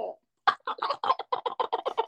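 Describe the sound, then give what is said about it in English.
A person's voice imitates a wild turkey gobble, a rapid, rattling string of about a dozen loud pulses following a brief low vocal sound. “He's gobbling, man. He's hot.”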